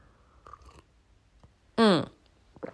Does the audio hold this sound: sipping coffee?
yes